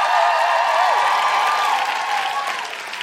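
Loud, sustained applause from a large audience at Vicar Street for the show's musical guest, a dense wash of clapping that holds steady throughout, with a faint whistle-like tone gliding above it.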